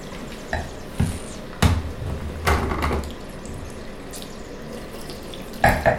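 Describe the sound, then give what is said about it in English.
Wine sloshes around inside a glass as it is swirled, in several short swishing bursts separated by quieter pauses, with no one talking. “That could you swirl for a bit.”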